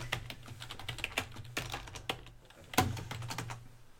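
Rapid, irregular clicking of keys on a computer keyboard, fairly crisp, with a few brief pauses and a low steady hum underneath; no one speaks.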